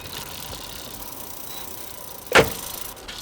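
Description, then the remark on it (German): A car door shuts with a single solid thump partway through as a man gets into a car outside a house in town on a warm evening, standing out against a steady low hum of traffic or an idling engine. Nobody speaks. “sahen sie Sabines Verlobten herauskommen und in einen Wagen steigen”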